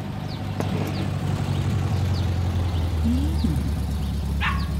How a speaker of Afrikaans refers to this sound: Oh, wat so rommel hoop van die kombi trek nou daarby in. Lyk soos 'n ding uit die hippie era.